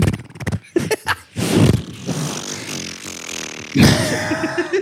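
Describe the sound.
A voice imitates airplane noises, a buzzy, sputtering drone that starts in short bursts, then stretches into a sustained rumbling hum, ending in a louder, rough whooshing roar.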